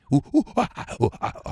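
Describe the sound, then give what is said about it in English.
A person imitates monkeys clapping, standing in for a missing sound effect, with a quick run of about seven loud, panting hoots and grunts, rising and falling in pitch in a steady bouncing rhythm. “Sorry, we were told we don't have the sound effects for monkeys clapping, so I was told to do, please don't cancel me.”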